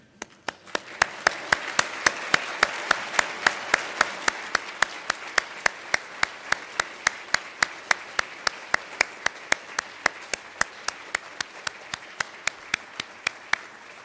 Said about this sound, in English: Would the audience please stand and let's give these vets a round of applause.